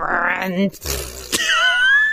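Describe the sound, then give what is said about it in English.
A voice imitates a balloon deflating with a long, buzzy, fart-like sputter whose pitch rises and wobbles, broken by a brief pause, then ending in a higher, squealing whistle. “I apologize to our listeners for the really extended fart noise, but I promise you I was trying to do the balloon.”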